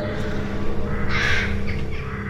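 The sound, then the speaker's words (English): A crow caws harshly, one drawn-out call followed by a shorter one, set against a steady low rumble in the background. “I can hear birds singing.”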